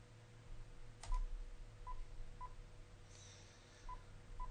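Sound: telephone number being dialed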